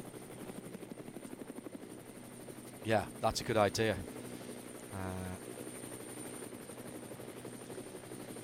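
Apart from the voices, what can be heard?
helicopter flying overhead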